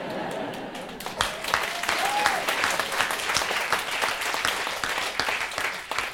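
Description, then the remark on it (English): An audience breaks into applause after a quiet second, the clapping building into a dense, steady patter of many hands that carries on evenly to the end. “For the first time ever, thank you, one clap, I'll take it.”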